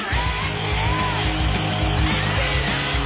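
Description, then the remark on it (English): Fake studio applause and crowd yells, recorded in a studio and dubbed under a music track on a fake live album, wash steadily over the muffled music, a dense, even roar with no breaks or swells for about three seconds. “Recorded in studio, fake applause put underneath it.”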